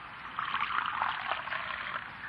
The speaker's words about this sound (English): Will you pour me some coffee